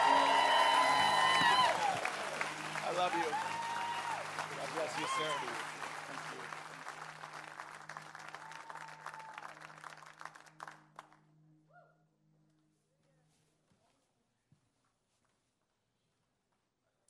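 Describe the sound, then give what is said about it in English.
An audience in Texas applauds and cheers loudly for about ten seconds to welcome Rabbi Lappin, the clapping thinning out and fading to silence, with a few voices speaking over the welcome. “I want you to give Rabbi Lappin a warm Texas welcome.”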